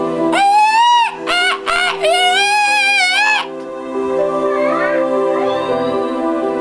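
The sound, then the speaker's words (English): Voices imitate a monkey eagle's call: several loud, high, wavering screeches in quick bursts, followed by softer, overlapping cries that trail off over a steady low hum. “It's the monkey eagle.”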